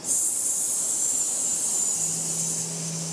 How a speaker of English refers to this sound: Wherever you are with the breath, exhale, hissing all the air out.